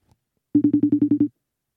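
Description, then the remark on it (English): A single short burst of an outgoing phone call ringing unanswered, a buzzy electronic trill pulsing rapidly about eight times, clear, with no voices. “He said, yo, you going to see me? Answer the phone”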